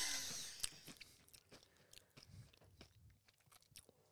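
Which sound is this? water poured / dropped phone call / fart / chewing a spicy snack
chewing a spicy snack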